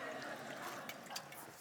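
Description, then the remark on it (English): Soft trickle of water being poured by a speaker, followed by a couple of faint sips or swallows as the speaker drinks the water, quiet and brief with no talking. “Probably need some water.”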